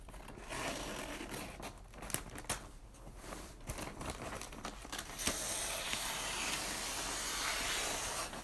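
scissors cutting wrapping paper

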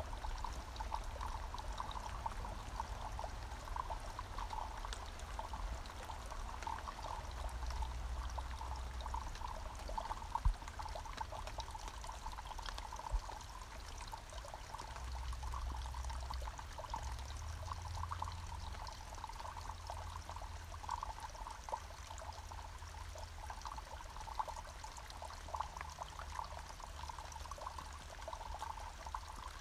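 rain falling

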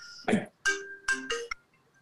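mobile phone ringtone

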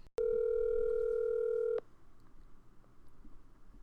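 outgoing phone call ringing

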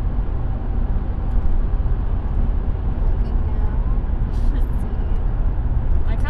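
car interior driving noise

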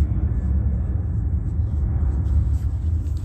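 helicopter flying overhead

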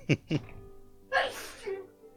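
sneeze

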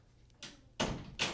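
door closing

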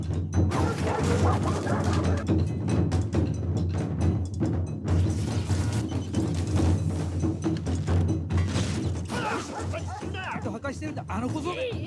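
dogs fighting

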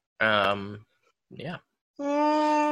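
yawn

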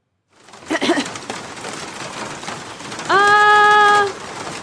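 storm rain

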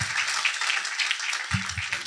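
loud round of applause

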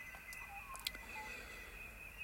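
birds chirping outside

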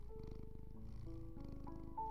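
cat purring

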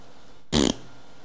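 fart

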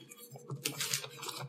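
bible pages turning

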